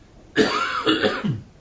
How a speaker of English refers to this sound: I'm glad the cough is diminishing.